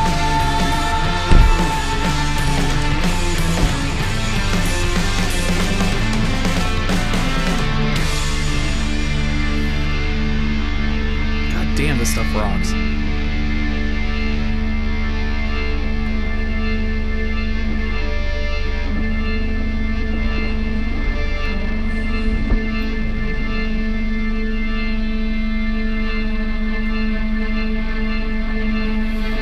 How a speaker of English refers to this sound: This keyboard, yeah, so there's the organ back there. I guess I couldn't hear it before because he's just hitting back there with those nice tones that it just didn't even click that. Oh yeah, that's definitely an organ.